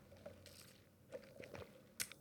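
Someone takes a quiet sip of iced coffee, with soft slurping and wet mouth sounds, a few small clicks, and a brief bright clink near the end.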